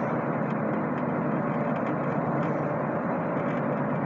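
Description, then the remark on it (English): A steady, dense rumble of a car engine and road noise heard from inside the cabin, droning evenly at a constant level with no voices. “Bet you didn't expect me to be reporting from a car without my headset microphone. Lots of ambient noise.”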